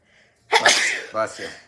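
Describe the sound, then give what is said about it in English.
A single sharp sneeze bursts out loudly, followed by a brief voiced breath or sniff trailing off right after. “Bless you.”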